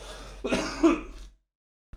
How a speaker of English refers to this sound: Sorry about that. I'm still got some of the cough here.